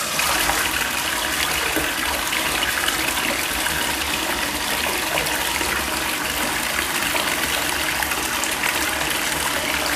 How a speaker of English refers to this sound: Drained the amount of water I wanted to, and now I'm gonna turn the faucet all the way on super hot water. So it's really loud. My faucet's kind of broken, even though I'm in a new house.